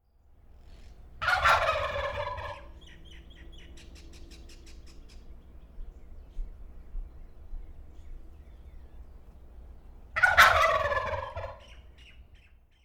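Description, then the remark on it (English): Two loud, rattling wild turkey gobbles ring out about eight seconds apart, each a rapid burst of throaty warbling, with faint bird chatter and quiet background hiss in between. “The one that started it all, the OG gobbler themselves. The wild turkey.”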